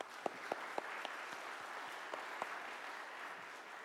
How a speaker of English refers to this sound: Let's give that one another round of applause.